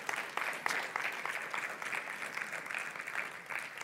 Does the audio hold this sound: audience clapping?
yes